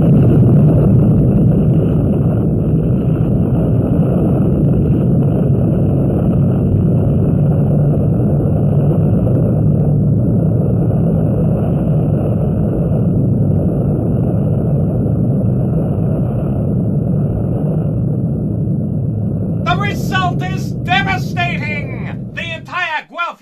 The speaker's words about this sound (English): Immediately and completely vaporized in a cloud of a synthetic nuclear explosion.